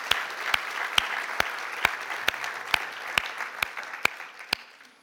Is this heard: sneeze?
no